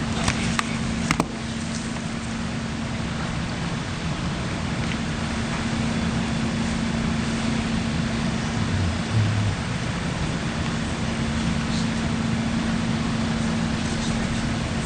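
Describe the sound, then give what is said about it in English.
Steady, unbroken static hiss from a courtroom audio feed ahead of the Kyle Rittenhouse verdict fills the whole stretch, with a low electrical hum underneath and a couple of brief clicks near the start. No one speaks. “I didn't want you to have to listen to all that static all the time.”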